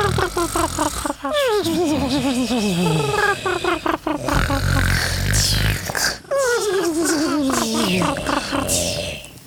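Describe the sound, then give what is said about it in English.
Voices imitate snoring with loud, throaty, wavering grunts and breathy mouth-breathing rasps, several overlapping in long drawn-out cycles that slide downward in pitch. “If I could just get a soundtrack of you guys snoring and sleeping and doing...”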